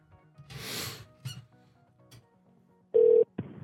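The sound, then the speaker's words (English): After some rustling and clicks, a ringback tone sounds through a phone line: one loud, steady electronic tone burst near the end, then a second starts as it cuts off. “That one rings.”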